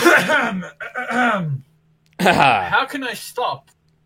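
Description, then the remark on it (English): Someone clears their throat before reading a question aloud, in two drawn-out, voiced bursts with gliding, groan-like pitch, fairly loud, separated by a short pause and with no words spoken. “Let me clear my throat, because this one has to be read perfectly.”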